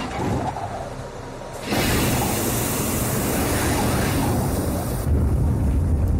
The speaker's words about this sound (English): And the jetpack's 8 engines light up for about 40 seconds.